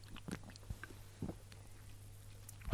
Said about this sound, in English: Well, it smells lovely. I'll just take a sip now.